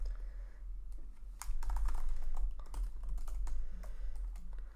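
Rapid, irregular clicking of keys on a computer keyboard, fairly quiet, with a low hum steady underneath and no voices.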